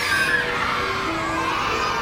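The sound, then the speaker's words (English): A mob of young kids raise their hands and hoot all at once to be chosen, a dense, steady wall of high-pitched voices with a few rising squeals poking out above the din. “A mob of young kids raise their hands and hoot to be chosen.”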